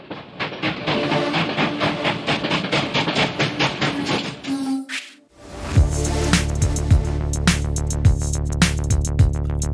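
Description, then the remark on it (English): A train sound effect: steady, rapid chugging clatter that briefly drops out, then returns loud beneath a sustained, droning horn blast with rhythmic clacking continuing underneath. “On aboard the choo-choo train!”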